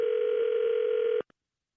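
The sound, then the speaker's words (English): A telephone line ringing out: one steady electronic ringback tone holds for just over a second, then cuts off abruptly, followed by a faint click. No one speaks. “I'm going to call him right back.”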